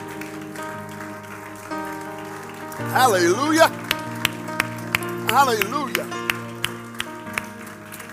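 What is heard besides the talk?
audience hand clapping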